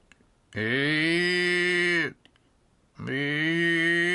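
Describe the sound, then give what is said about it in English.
A person imitates a bawling calf with two long, loud, strained moaning calls, each rich and nasal, falling slightly in pitch at the end, separated by a short pause. “You make a calf sound.”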